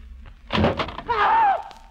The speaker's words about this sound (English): you cover the door while I open it. Okay.